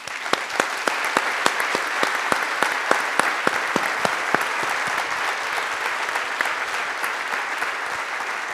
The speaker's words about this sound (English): So I want to give her a round of applause.